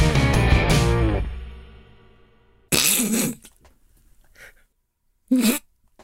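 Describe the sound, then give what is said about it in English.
A fading musical tone gives way to a loud sneeze, then a second sharp sneeze a couple of seconds later, with quiet in between. “Sorry, I just sneezed.”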